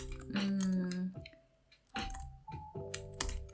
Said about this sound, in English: What am I typing here?